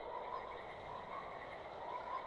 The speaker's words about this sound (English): Oh, I hear a croak. You're right. I think that was a cricket.